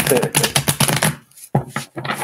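Tarot cards being shuffled up close, a dense run of crisp riffling flutters, then a short pause before a second burst of shuffling, loud and steady.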